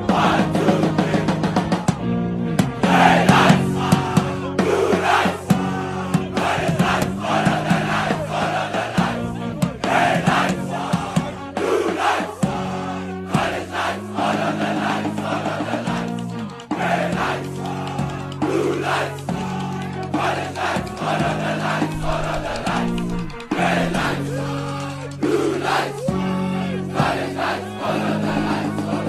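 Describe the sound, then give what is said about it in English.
A large crowd of voices chants a South African high school war cry, St. Albans, in loud unison, holding rhythmic, stepped notes that rise and fall, with brief pauses between phrases throughout. “SA HIGH SCHOOL WAR CRY CHALLENGE”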